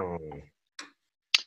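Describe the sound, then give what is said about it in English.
A brief voiced sound fades out, followed by two crisp, isolated clock ticks about half a second apart, like a slow tick-tock, fairly loud against silence. “Clock's ticking.”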